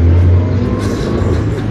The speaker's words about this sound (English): I'm seeing three grey cars pass me now. Actually, four grey cars pass me now.